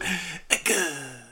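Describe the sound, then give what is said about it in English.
A dry throat-clearing sound, a raspy grumble followed by a short sharp cough burst and a rough trailing exhale, heard alone without speech. “And then you just cough up some dust.”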